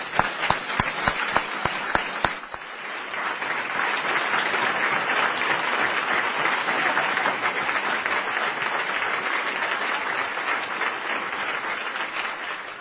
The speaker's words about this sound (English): Please join me in a round of applause for the training team.